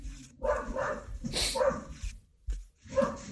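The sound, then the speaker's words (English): A dog barks and whimpers repeatedly in the background in short, agitated bursts, sounding distressed, with brief pauses between yelps. “That dog is not happy.”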